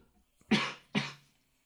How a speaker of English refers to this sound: I just had to. I just kind of turned off camera to kind of like cough delicately.